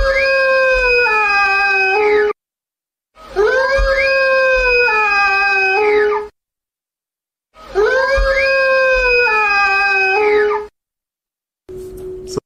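A creature howl recreated in a sound lab from people's descriptions of the howler: three long, loud, wailing calls of about two seconds each, their tones rising then sliding down, separated by short silences, with a fourth call just beginning at the end.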